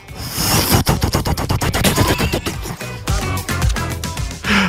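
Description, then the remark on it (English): A helicopter's rotor beats out a rapid, steady chopping rhythm, loud, heavy thumps repeating several times a second with a rough whooshing texture, and no talking over it. “Quick, get in the helicopter!”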